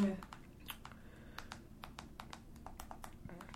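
Rapid, irregular clicking of TV remote control buttons while putting on WWE Raw highlights, around a dozen crisp presses in a few seconds, fairly quiet over a low background murmur.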